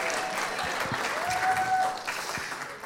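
An audience claps steadily, a dense, continuous patter of many hands that holds for a few seconds before easing slightly toward the end.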